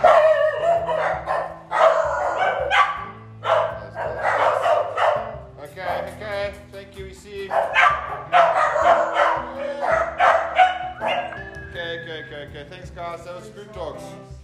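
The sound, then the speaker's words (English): Dogs bark repeatedly in a series of loud, uneven bursts that continue for several seconds, with a few higher whining yips mixed in and people's voices underneath. “Dogs, we saw him.”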